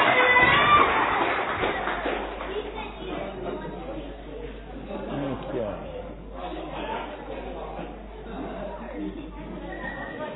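An audience claps and cheers for three contestants, loudest in the first second or so, then settles into a steady wash of applause and crowd chatter that carries on for about ten seconds.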